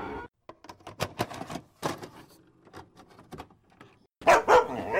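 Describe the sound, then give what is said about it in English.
Dogs barking in a rapid series of short, sharp yaps, closing with a louder, fuller pair of barks; no one speaks. “Dogs, they're coming. They're coming your way.”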